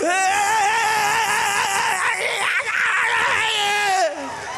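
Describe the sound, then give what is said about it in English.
Loud, sustained high-pitched screaming from an audience fills the space almost without a break, voices straining and wavering together like a crowd cheering, then dropping off abruptly near the end. “If you ever had to call on God, you ought to make some noise. Let everybody scream, scream, scream, scream.”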